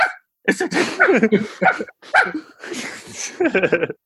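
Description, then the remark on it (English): Dogs barking in another room in a rapid, overlapping string of yips and barks, fairly loud, filling most of the few seconds with only brief pauses between bursts. “I literally just made the dogs bark in the other room.”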